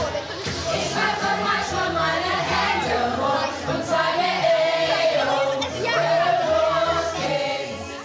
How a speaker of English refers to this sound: Behind me, what you can hear is about 50 students singing German karaoke in ICT Suite 1.